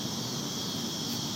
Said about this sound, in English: And we've transferred from cicadas to crickets now. No, I still a cicada. But I hear the crickets too. I hear the crickets coming too, though.